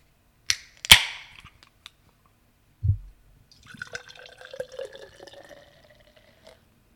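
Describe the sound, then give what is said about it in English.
A sharp metallic crack and fizzy hiss as the tab of a can of ale, brewed in collaboration with Bond Place Brewing of Bethlehem, Pennsylvania, pops open. A soft thunk follows, then a few seconds of liquid pouring and glugging into a Spiegelau lager glass, rising in pitch as it fills. “This one's in a can.”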